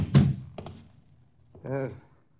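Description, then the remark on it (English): A door shuts with one loud, low thud, followed by a couple of faint latch clicks. After a short pause, a brief voice sound follows. “Close the door, knuckle brain.”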